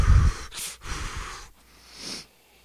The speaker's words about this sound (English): That's why he's breathing heavy all the time.